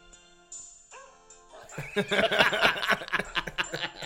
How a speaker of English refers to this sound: Fucking dogs. Every year I found a whole album. There's 22 albums.